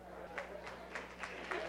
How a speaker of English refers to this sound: Look at the hand clap.